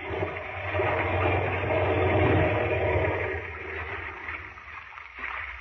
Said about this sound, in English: Well, we land. I'll put the plane down in the water close by. All right. Here we go.